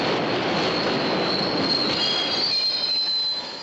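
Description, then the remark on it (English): Underground tube train wheels squeal loudly against the rails, a high metallic whine riding over a steady rumbling roar of rolling cars that stays constant before easing slightly at the end. “goes down into the tube and for the second time in the film is contemplating suicide and throwing herself on the tracks or in front of the train.”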